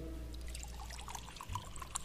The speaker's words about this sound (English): I've got some water. I've had this out here for a little while, actually all afternoon. I'm going to pour it in the mug.